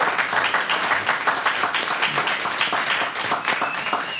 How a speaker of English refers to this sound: Very good, very good. Give everyone a round of applause for that one.